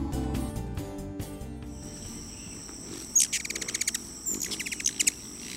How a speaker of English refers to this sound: Did you recognize that bird call? We'll be talking about that particular species of bird in just a moment